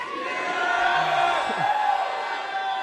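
An audience with hands raised above their heads yells the word "Jesus" at full volume all at once, a dense, sustained roar of many shouting voices that holds steady and loud for the whole few seconds.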